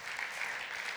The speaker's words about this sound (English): Let's applaud the Lord Jesus for his whispers.